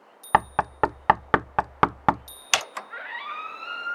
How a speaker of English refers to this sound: No, it's the front door, and that wasn't my knock. Go away! We're closed! I recognize that knock. I'll get it. Like clockwork.